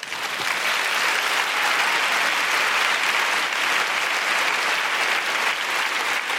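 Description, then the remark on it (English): A large audience of women at the Palladium applauds steadily, a dense, sustained wash of clapping at an even, loud level throughout with no voices standing out. “And keep that applause going as I ask Ali McGregor and the Suffragette cast to finish the show.”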